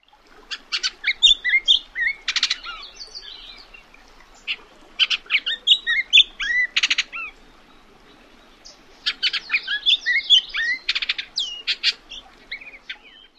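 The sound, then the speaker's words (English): A Bullock's Oriole sings a jumbled song of whistled notes, harsh rattles and squeaky chatter, delivered in three bursts with short pauses between, clear, with no one talking. “It's a little bit of everything, which is perfect for this bird, which is the Bullock's Oriole.”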